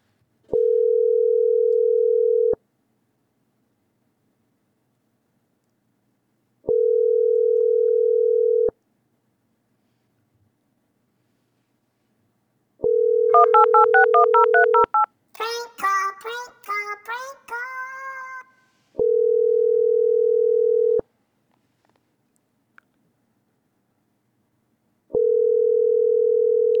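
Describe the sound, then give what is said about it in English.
A prank phone call rings out on the caller's end: steady ringback tones in long, evenly spaced pulses, briefly interrupted midway by a burst of chirpy, beeping electronic tones before the ringing resumes. “We shall see how they react. If they answer the phone, if they even...”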